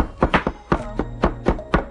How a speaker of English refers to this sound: Don't cut your fingers. That chopping sitting down is a lot harder. Yeah, I think you have to put a lot more of your body strength or something.